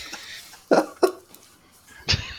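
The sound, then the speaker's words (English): A man clears his throat with a few short, gruff bursts, two close together and a third after a brief pause, with no talking. “Just clear my throat to prepare you for this.”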